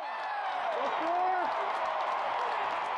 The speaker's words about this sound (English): The game is starting, the crowd is cheering in the back.